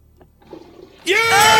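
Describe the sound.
A toilet flush trails off quietly with faint water rushing, then a loud, excited voice cuts in over the fading flush.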